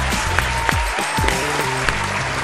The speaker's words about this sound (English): Fans at the stadium were heard cheering and applauding that decision. It was beautiful.